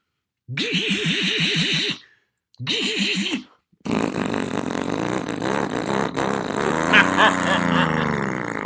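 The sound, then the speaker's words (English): A man's voice mimics the engine of an orange 1970 or 1972 Volkswagen car: two bursts of wavering, sputtering buzz separated by short pauses, then a long rough revving rumble that climbs and warbles like an engine accelerating. “you know, like do like my sound effects, like, you know, helicopters or, you know, like, for instance, like my Volkswagen that I was driving that my friend Sam loaned me at the time, an orange 1972 or 70 Volkswagen.”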